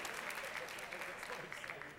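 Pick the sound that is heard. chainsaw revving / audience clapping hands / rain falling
audience clapping hands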